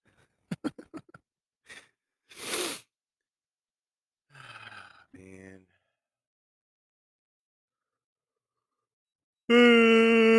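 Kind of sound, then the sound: human body sound, yawning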